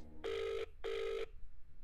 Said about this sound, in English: Let's ring this old girl and get her on the phone, shall we?